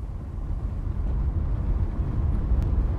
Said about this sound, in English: The first one is the car rumbling, and I'll explain why.